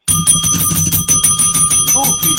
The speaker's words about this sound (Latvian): Lūk viņš zvaniņš.